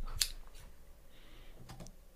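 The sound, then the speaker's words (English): A sharp metallic click from a pair of real, sharp scissors rings out near the start, followed by softer clicks and rustling as the blades are handled, with faint background noise and no speech. “go on, put this, they're actually not play scissors, these are proper scissors.”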